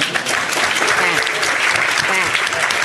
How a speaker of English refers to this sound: That's where you're supposed to give them a round of applause.